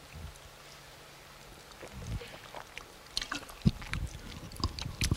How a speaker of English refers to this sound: excuse me, let me get a little water.